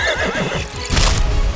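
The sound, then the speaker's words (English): A winged pony whinnies with a wavering, high neigh, then a heavy burst of hooves stomps down loudly on someone, a thudding, noisy impact that carries through to the end. “He just comes over and like pony stomps him. With Pegasus like, wings.”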